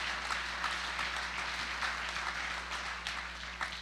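An audience claps their hands to thank God during a sermon, in a steady, dense wash of applause lasting a few seconds, with a low constant hum beneath and no talking.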